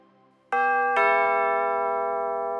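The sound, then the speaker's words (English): A residence doorbell chimes with two quick, bright tones, one right after the other, then rings on in a sustained, slowly fading tone. It is clear, with no voices. “The doorbell to their residence chimed.”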